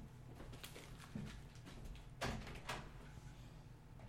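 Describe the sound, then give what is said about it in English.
A door is opened for an arriving guest with a few soft clunks and rattles of the handle and frame, spread over a few seconds against a low background hum, with no one talking. “Let me get the door.”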